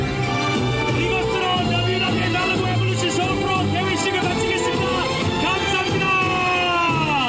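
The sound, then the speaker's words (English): A crowd cheers steadily for several seconds as a ribbon is cut, with overlapping shouts, high whoops and excited voices blending into a loud, continuous roar. “I want you guys to make some noise as they cut this ribbon up.”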